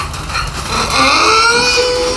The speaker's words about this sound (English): The donkeys want to be on here too, don't they? I guess they do.